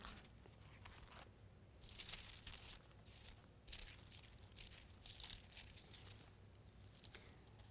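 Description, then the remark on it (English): Soft, scattered rustling of many thin Bible pages being turned at once as an audience turns to Matthew, with overlapping crinkles and flutters coming in waves, with no one speaking. “I don't hear as many pages turning with all the electronics.”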